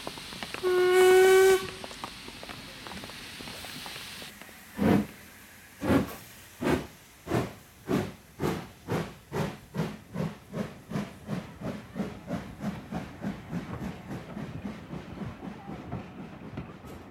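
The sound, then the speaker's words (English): A loud, shrill steam train whistle blasts briefly at platform 2 of a railway station, followed by hissing steam, then the engine's heavy chuffs start slow and quicken steadily as the train pulls away. No voices. “Train standing at platform 2 is the 736 to Birmingham.”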